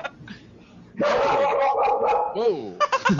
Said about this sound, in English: Dogs, they won't shut up.